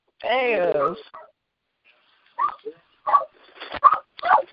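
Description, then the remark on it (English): A dog lets out one drawn-out, wavering whimper, followed by a pause and then several short bursts of people talking. “leave that dog alone, bitch.”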